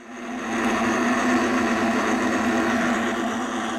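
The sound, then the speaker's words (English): A recreated chorus of many bullfrogs calling all at once, imagining how the 1754 frog pond might have sounded, blurred into a dense, steady buzzing drone that swells in quickly and stays loud throughout, with no talking. “She's built a recreation of what the 1754 frog pond might have sounded like, with all of the bullfrogs bleeding at once.”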